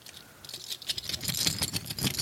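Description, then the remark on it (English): A plastic baggie crinkles and rustles while two small buttons, a Lillern Tapes button and one reading "Be Sad Forever," are shaken out, rattling and clicking against it in a busy irregular clatter that gets louder toward the end, with no talking. “We got a little baggie of buttons. Let's check these buttons out.”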